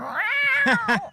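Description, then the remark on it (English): A cat lets out a long, drawn-out meow that rises and wavers, followed by a few quicker, clipped meows in close succession, loud with nothing else behind it. “Oh, man, right, meow?”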